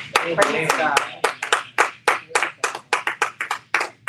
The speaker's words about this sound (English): You don't have to clap for that.